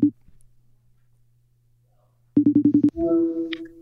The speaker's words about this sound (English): Okay, FaceTime. Here we go. I hear it ringing.